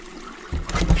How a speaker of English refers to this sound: You just flushed Dickie down the toilet!